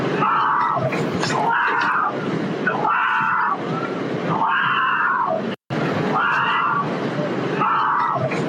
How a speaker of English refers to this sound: Is that the same dude that was like walking across in the beginning of the video and like he was just like coming back and like screaming in panic